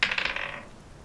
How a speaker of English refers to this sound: Okay, I need another D20 roll for day three.